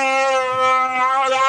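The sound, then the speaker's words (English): A loud, sustained Wookiee roar from Chewie aboard the Millennium Falcon at light speed in deep space, a rich, harmonic, moaning cry that holds steady for over a second with slight wavering in pitch, heard alone without any talking. “Chewie roars.”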